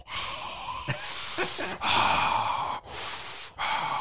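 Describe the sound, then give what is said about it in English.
Someone imitates Darth Vader's heavy, hissing mask breathing, several long raspy breaths in and out with brief pauses between them, loud and steady, with no speech. “I'm Darth Vader now.”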